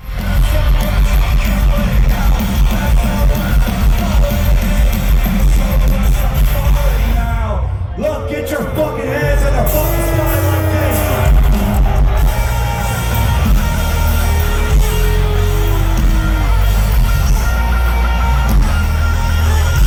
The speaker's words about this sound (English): Now, I have a clip that somebody posted where you can hear the crowd's response